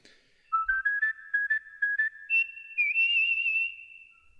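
Whistling of a short tune, a series of clear pitched notes rising gradually then holding a long wavering tone, moderately loud with no talking.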